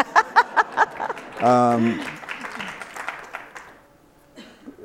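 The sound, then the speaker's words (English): A handful of sharp, evenly spaced claps lead into a loud, sustained whoop and a burst of audience applause and cheering, which gradually thins out and fades. “So now you can clap.”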